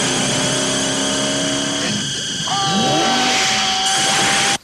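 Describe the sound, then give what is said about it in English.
A car crashes through a billboard: a loud engine roars steadily, breaks into a brief rough burst of noise midway, then revs and whines on at a shifting pitch before cutting off abruptly. “That is a car going through a billboard.”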